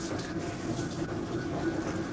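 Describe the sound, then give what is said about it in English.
A washing machine runs with a steady, low churning rumble and a faint rhythmic mechanical clatter, continuous and even in loudness throughout, with no voices. “There's a washing machine washing away.”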